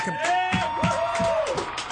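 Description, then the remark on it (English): A big studio crowd, not yet shown on camera, claps and cheers, with long rising and falling whoops over a steady wash of applause and crowd noise. “But let's just say, come on, clap it out so we can hear.”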